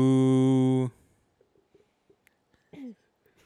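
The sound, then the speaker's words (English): During a game, a person imitates a cow with one loud, drawn-out, low moo lasting about a second, followed by near quiet with a few faint breaths and small mouth sounds. “Moo.”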